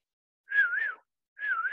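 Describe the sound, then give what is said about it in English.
A person whistles two short, wavering notes as a two-whistle rating for the film The Rental. Each note is about half a second long with a brief pause between them, fairly clear with no talking. “Okay, that was me whistling.”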